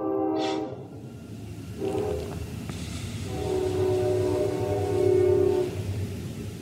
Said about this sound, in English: You said wait for the train.